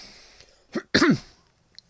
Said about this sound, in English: I'll have fun editing that cough out.